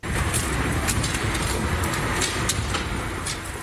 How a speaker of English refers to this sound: That is the machine known as Phyllis, boring a tunnel that reached the upcoming Oak VGH station. The 150-meter-long machine has now passed through four of the six underground stations, having excavated more than 2 kilometers of tunnel since the fall